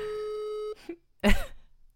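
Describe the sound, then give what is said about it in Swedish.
A steady electronic telephone tone sounds for under a second and cuts off as a call goes unanswered, followed by a short pause and then a loud, frustrated sigh or groan from a voice. “Oj, snälla, jag ringer igen.”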